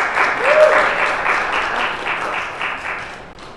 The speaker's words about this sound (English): So give him a great round of applause as he comes.